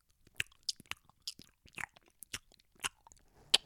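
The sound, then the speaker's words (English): A voice imitates loud, wet gum chewing, with a rapid run of smacking and clicking mouth sounds in an irregular rhythm and no words spoken. “people sip their coffee, smack their gum, man.”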